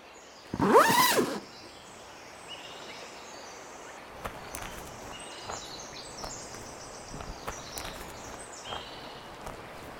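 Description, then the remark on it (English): A deer lets out one loud, rough call lasting about a second, then quiet outdoor ambience follows with faint, scattered bird chirps. “They're just deer.”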